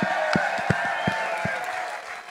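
An audience claps steadily, a dense wash of many hands with a few sharper, louder claps standing out, and the crowd noise holds at an even level throughout.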